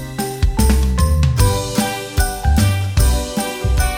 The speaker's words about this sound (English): So grab your festive bells, put on your tinsel, and let's cut ourselves a healthy slice of Christmas joy.